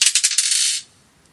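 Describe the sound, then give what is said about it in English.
A quick rattle of clattering impacts as dice are thrown, several rapid clicks and bounces over a hard surface that settle within under a second, followed by near silence. This is the second of five dice throws. “Dice number two.”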